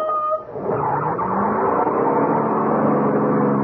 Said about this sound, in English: Lou's voice was gone, drowned by the roar of the engine.